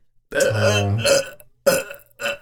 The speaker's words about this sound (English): I'm gonna keep burping into the microphone until you do it.